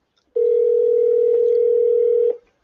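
A steady, unbroken telephone dial tone hums for about two seconds, fairly loud, as a call is placed to a caller, then cuts off abruptly. No one speaks.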